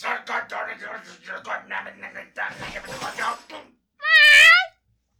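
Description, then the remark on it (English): Indistinct chatter runs for a few seconds, then stops, and a single loud cat meow follows on its own, rising and wavering for under a second. “I'm gonna end up having to sleep with the cat.”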